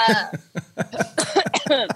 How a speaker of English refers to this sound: That was a cough because I smoked a cigar and drank a bottle of Dom.